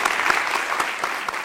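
An audience claps steadily, a dense, even wash of many hands with a few sharper claps popping out above it, sustained at a fairly loud level throughout.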